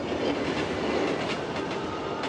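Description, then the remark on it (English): A train on the way to Belfast rumbles steadily along the tracks, its wheels clattering in a continuous, fairly loud rhythm with faint periodic clacks, heard alone without any voices. “Imagine Paddy's train thoughts on the way to Belfast with his new bride, Ellen Treston.”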